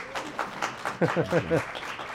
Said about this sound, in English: So excited to be here for our last Mission Critical live taping of this year, at least, with our guest today, President and CEO of LCBO, Dr. George Soleas. A big round of applause.